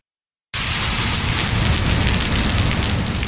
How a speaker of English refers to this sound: city grapples with devastating floods and rain continues to pour down